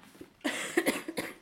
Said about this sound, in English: I'm coughing. Sorry. Cough for a bit.